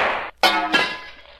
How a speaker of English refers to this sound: I've broken the lamp, Shadow.